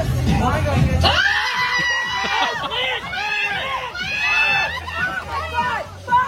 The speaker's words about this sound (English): it takes all that yelling and screaming to get his attention, to be like, nah, you gotta move, man.